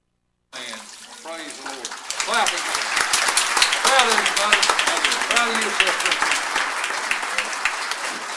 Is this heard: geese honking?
no